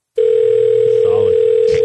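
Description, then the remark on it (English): A loud, steady telephone dial tone starts abruptly and holds unbroken, with faint muffled clicks and beeps barely audible beneath it as numbers are typed into a phone keypad. “He's furiously typing numbers into his keypad here”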